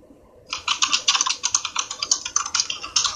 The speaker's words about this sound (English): Who's that clacking away on their keyboard?